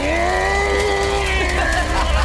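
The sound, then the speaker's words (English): A metal-cutting power saw, fitted with a blade made specifically to cut through metal and used to break into a bulletproof truck, revs up loud, its engine holding a steady, high droning whine with a slight pitch wobble throughout. “Okay, so this is a saw, obviously, but it has a blade specifically made to cut through metal.”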